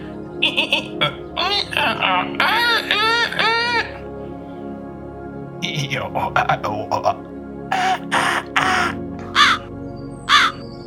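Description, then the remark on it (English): A person imitates a crow with a string of harsh, nasal caws, delivered in bursts with short pauses between them, loud with no other talk. “I'm going to follow you now, Crow. Okay, he doesn't understand English. I could translate that if you like.”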